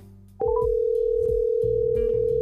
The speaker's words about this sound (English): I'm waiting for the call to go through.